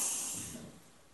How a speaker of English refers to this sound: Exhale. That's it. Keep breathing. Let it flow, you know? You need your breath for it to keep moving.